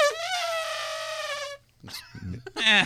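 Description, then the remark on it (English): A person imitates an elephant's trumpet with one loud, sustained, brassy wail lasting over a second, followed by a short pause and some brief, breathy vocal sounds. “Come on, that's a solid elephant.”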